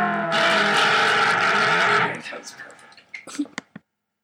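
A loud, honking nose blow runs for about two seconds, followed by the soft fizz and crackle of Coke poured into a glass, ending with a few sharp clinks.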